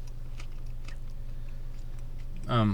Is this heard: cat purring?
no